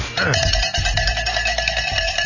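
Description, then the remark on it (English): A bell rings loudly and steadily for about two seconds, its bright, shimmering tones layered over a low, rumbling hum. “Ring the bell.”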